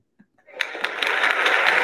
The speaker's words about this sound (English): That's a better applause, I think. Okay. You can stop now.